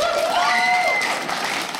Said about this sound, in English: Clap if you have a pet, if you have a dog. Clap. Clap if you have a cat.